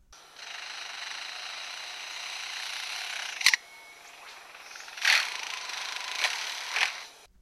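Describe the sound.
An imitation of a chainsaw that won't start: a raspy, buzzing whir runs for a few seconds, cuts off with a sharp pop, then sputters back in several short, uneven bursts.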